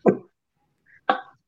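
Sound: a cough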